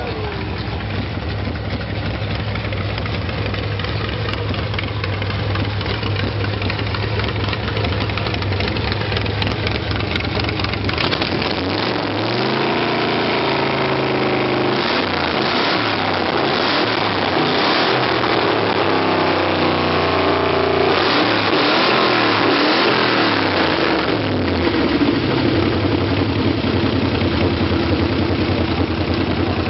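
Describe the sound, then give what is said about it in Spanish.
A vintage race car, the galera of the hermanos Emiliosi, at an autódromo (racetrack), idles with a steady, throaty rumble, then revs repeatedly, its pitch rising and falling in loud bursts before settling back toward idle. “Ahora sí te estoy mostrando la galera de los hermanos Emiliosi.”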